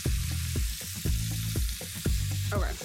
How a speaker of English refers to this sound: browns the duck in the pan to render the fat.